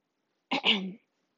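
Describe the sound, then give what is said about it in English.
A single short, deliberate cough that turns into a throat clearing, fairly loud, lasting about half a second with silence around it. “Yes, I did that on purpose. It wasn't just a random cough.”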